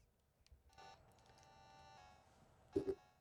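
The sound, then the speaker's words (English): A few short electronic telephone keypad tones beep in sequence as someone dials to make a phone call, over a faint background hum, ending with a louder pair of quick beeps near the end. Nobody speaks. “Okay, I guess I'll make a phone call.”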